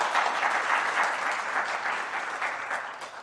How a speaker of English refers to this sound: But for you who clapped, I respect you and love you, just a little less than everybody else.